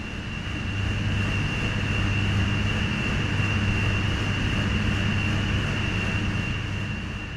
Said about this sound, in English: Steam separated from the underground water, which can be up to 300 degrees Celsius, is used to power some of the plant's 7 turbines. The process is accompanied by a hissing sound.